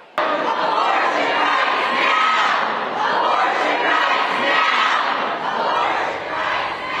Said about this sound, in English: hundreds of people gathered in both downtown Raleigh and inside the legislative building, rallying against the new proposed restrictions. In the last 30 minutes, lawmakers broke for dinner, and as they did, protesters in the chamber began shouting.